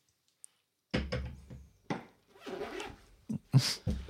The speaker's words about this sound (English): Did somebody just unzip their pants? Not me. Sounded like that.